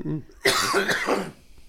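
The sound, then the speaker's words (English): A single harsh cough bursts out loudly and rasps for nearly a second, just after a brief murmur of a voice, then fades into quiet. “Sorry for this cough.”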